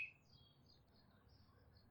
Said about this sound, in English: Nice robin call.